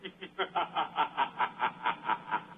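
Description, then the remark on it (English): A canned laugh sound effect: a rapid, evenly spaced series of about a dozen snickering bursts, steady, with no talking over it. “That's my laugh sound effect.”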